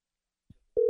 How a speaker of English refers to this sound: Okay, here we go. Turn on the old phone. There's one ring.